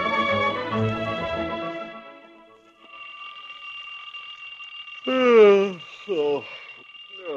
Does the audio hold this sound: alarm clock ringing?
yes